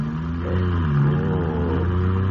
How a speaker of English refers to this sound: Sure is a smooth car you got here, Ranger.